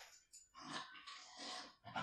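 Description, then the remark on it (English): A small Yorkshire Terrier named Colby, just brought back from the groomers, snuffles and grunts excitedly in a series of quick, breathy bursts, soft, with no talking. “just brought back the dog from the groomers. And so that is that commotion.”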